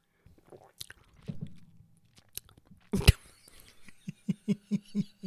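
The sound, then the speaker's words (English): Mouth sounds: soft clicks, then a short wet slurp as someone takes a second sip of a lime cachaça cocktail made with sugar, followed by a run of quick, rhythmic gulping or breathy pulses. “Okay, second sip.”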